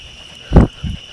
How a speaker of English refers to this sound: And I say that because there's mosquitoes out here right now. We are on a night walk.